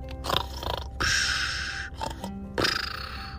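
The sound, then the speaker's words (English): A sleeping cheetah snores in rough, rasping breaths, each loud snort-like pull lasting about a second, separated by brief pauses, with a low grunting rumble underneath. “Yeah, sometimes when cheetahs are sleeping, they snore.”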